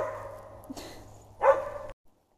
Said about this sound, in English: I knew it would only take so long before my dog started barking.